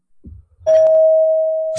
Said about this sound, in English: A doorbell. Answer, a doorbell.